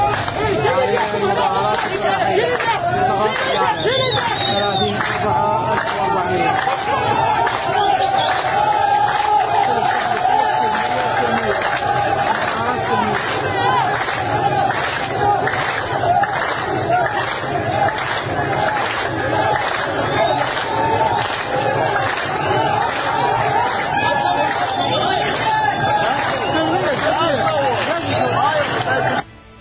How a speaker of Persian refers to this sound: تظاهرات گسترده مردم در اعتراض به بی‌آبی و ظلم. 3 تیر شادگان.